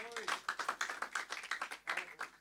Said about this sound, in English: Hallelujah. Hallelujah. Hallelujah. Clap hands for Jesus.